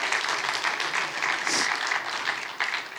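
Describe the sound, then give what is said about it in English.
An audience claps steadily for the volunteers, a dense and loud wash of many hands that fills the whole stretch with little variation and no voices breaking through. “You guys clap for our volunteers.”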